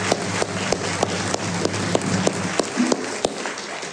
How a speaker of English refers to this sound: Let's give those persons who participated in the fifth decade a round of applause.